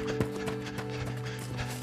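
Steady, rhythmic thuds of horse hooves and quick running footsteps, moderately loud, as a rider jumps off his horse and runs, over a continuous low hum with no talking.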